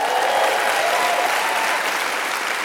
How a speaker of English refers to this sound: Come on, if you're excited about Jesus, come on, why don't you give him a hand clap of praise.